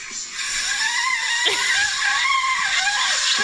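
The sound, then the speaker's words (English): A bass shofar blown in one long, strained, raspy blast, its pitch wavering and bending throughout, loud and steady with no talking over it. “This is bass shofar.”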